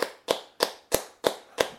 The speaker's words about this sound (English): Here we go, the clapping has started. We're clapping heroes.